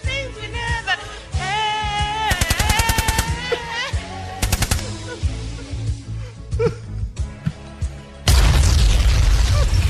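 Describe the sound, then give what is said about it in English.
Rapid bursts of gunfire crackle in quick volleys, with loud booming blasts and a chaotic roar building to a sustained, heavy explosion-like rumble at the end. “Do we have any gunshots? That would work as well.”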